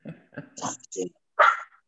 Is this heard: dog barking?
yes